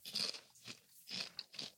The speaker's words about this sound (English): Good crunch, good flavor. Nice and thin. I like the density. Gives you a great crunch. Nicely coated, not salty.